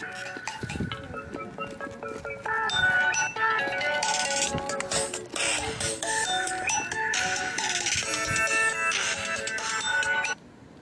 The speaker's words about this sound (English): Damn that damn phone.